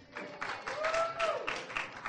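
audience clapping

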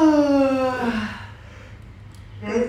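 yawn

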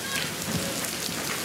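rain falling

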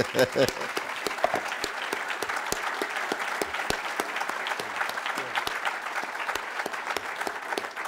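audience applause

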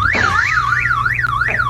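alarm sound effect

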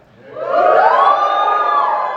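audience cheering

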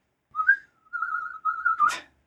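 person whistling

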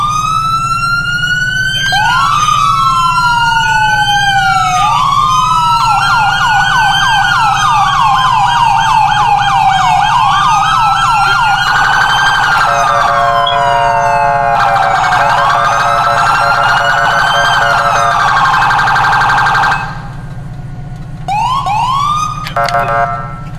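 police vehicle siren

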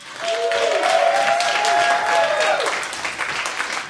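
audience applause

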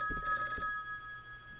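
telephone ringing

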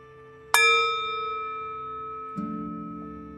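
ringing bell

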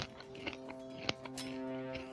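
chewing snacks

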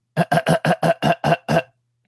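throat clearing

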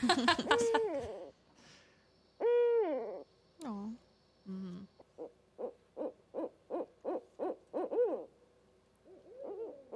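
owl call

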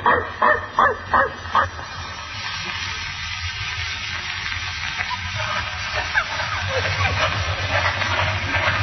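dog barking

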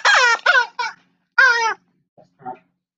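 parrot squawking

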